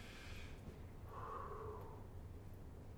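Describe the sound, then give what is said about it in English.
A single slow, deep breath drawn in through the mouth, airy and hissing for about a second, quiet against a low background hum, demonstrating deep breathing as a substitute for smoking. “The weird thing is, even just that deep breathing is something most smokers hadn't done without a cigarette since they started smoking.”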